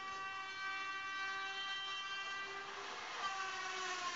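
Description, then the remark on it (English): A train goes by on tracks, its horn blaring in one long, steady, multi-toned blast that holds for several seconds, with rumbling rail noise underneath and no voices. “watch out for the trains.”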